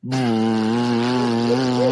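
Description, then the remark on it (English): A loud, steady motorized buzz like a vacuum cleaner kicks in abruptly and drones at an even, rich pitch for about two seconds, with no one talking. “I swear to God, that better be the vacuum cleaner.”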